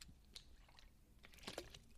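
Someone quietly sips water, with a few soft, wet mouth clicks and swallowing noises scattered over two seconds, no talking.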